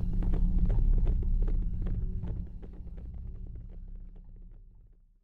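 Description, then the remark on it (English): A horse gallops out of the town of Bonita in Arizona Territory, ridden by the Kid. It makes a rapid, uneven drumming of hoofbeats over a low rumble, loud at first, then gradually fading as it moves away. No one speaks. “He jumped onto a horse that wasn't his and galloped out of Bonita.”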